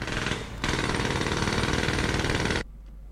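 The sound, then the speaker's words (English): A pneumatic drill, a jackhammer, hammers loudly in a sustained burst of rapid, rattling impacts for about two seconds, with a brief lead-in and a low engine rumble continuing after it stops. “It's a pneumatic drill, a jackhammer.”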